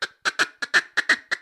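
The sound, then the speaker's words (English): A duck call blown in a double cut feed chuckle, also called a separator call: about nine short, raspy quacking notes in an uneven, bouncing rhythm, fairly loud, with no talking. “That's kind of the basis of a double cut feed chuckle that we call it, or a separator call.”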